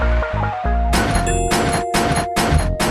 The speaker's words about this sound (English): Gunshots, bitch.